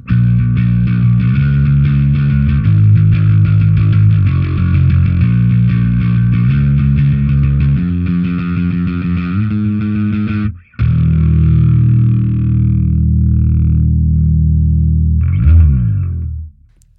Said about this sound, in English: Totally different. I am really into like mid-rangey tones at the minute. So that was just the P bass pickup on the PJ configuration. And I think this sounds so good. I'm a big fan.